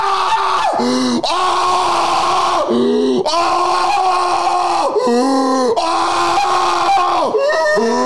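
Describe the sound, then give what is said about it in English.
Loud, strange heavy breathing over a phone call, with a groaning, voiced rasp, rising and dipping in repeated cycles about every couple of seconds, continuous, with a harsh, eerie tone. “That was like a fucking demon. That is fucked. The breathing.”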